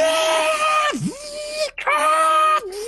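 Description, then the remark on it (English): A voice imitates an anguished scream, muffled as if through multiple panes of ice: sustained strained wails with a sharp dip and pitch bends, broken by brief gaps, loud with no other sounds around it. “You can hear, muffled through these multiple panes of ice, this screaming.”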